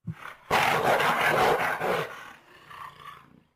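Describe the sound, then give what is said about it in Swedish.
A jaguar calls: a short low grunt, then a loud, harsh, raspy roar lasting about two seconds that trails off into softer rumbling growls. No voices are heard. “Det är nästan som en varg, fast lite annorlunda. En jaguar är det.”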